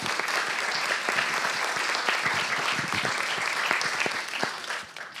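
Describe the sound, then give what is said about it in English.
A crowd claps steadily, a dense wash of many hands with scattered sharper individual claps, holding an even level before thinning slightly at the end, welcoming two speakers introduced for a conversation at an artist talk. “Give them a clap.”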